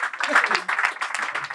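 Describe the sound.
An audience breaks into a dense, steady round of applause, many hands clapping at once in a loud, continuous patter that holds for the whole moment with a murmur of voices mixed in. The round of applause is for Frankie Dettori.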